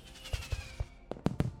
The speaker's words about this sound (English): And fireworks erupt, lighting up the sky above the lake.